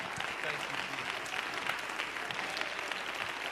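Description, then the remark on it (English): A church audience applauds steadily, giving the Lord a hand clap of praise, a dense wash of many hands clapping at once at an even, sustained level with faint voices mixed in underneath. “And let's just give the Lord a hand clap of praise for His Word.”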